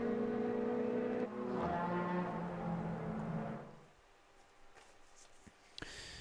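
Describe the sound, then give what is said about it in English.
The number 5 Audi race car of Phoenix Racing, driven by Vincent Kolb, comes in for a pit stop. Its engine drones loudly with a steady buzzing tone that sags in pitch and then cuts out, leaving quieter pit-lane noise and a sharp clank near the end. “Car number 5, the Audi, is in for its latest stop.”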